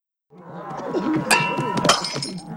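A stage light falls and smashes on the floor, with bright glassy breaking and clinking fragments ringing out over a couple of seconds, loud.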